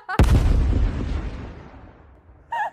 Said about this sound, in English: Please edit in the explosion sound.